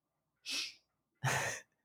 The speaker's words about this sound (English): Quit panting. Yeah, the dog's making noise. He's all the way across the room. He's panting like crazy. You can hear it in the microphone.